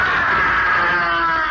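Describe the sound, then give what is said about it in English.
A loud, sustained high-pitched scream of pain and terror rings out at almost midnight by the seaside, holding steady for over a second with no talking around it. “It's almost midnight, when suddenly there's a scream of pain and terror.”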